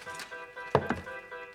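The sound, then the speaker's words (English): Dice clatter onto a hard surface in two quick, sharp knocks, the second lighter than the first, over a steady low background hum. “I'm going to hit it again. Nice, go for it. Because, yeah, the dice are all messy.”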